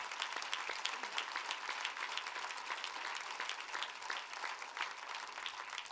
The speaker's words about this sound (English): But to every mom here, would you just take a moment with me and applaud them and celebrate motherhood and the moms who are a whole lot like Jesus.